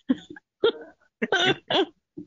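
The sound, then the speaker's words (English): A person with a runny nose coughs several times in short, uneven bursts inside a shed, with brief pauses between them and a softer final cough at the end. “I'm getting a cough too.”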